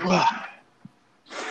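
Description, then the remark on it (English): A sharp, loud sneeze bursts out and fades over about half a second, followed by a brief lull and another rush of breathy noise at the end. “Bless you.”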